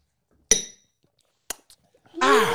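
Glasses clink together in a toast, a bright ringing tap followed a second later by a shorter second clink, then someone starts talking.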